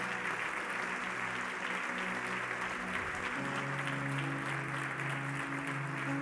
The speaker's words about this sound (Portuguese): Se é para aplaudir, aplauda direito.